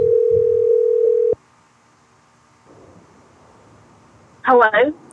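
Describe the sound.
A steady, loud telephone dial tone of an outgoing call hums at one low pitch for about a second before cutting off abruptly. Near-silence follows, then a brief burst of a voice speaking.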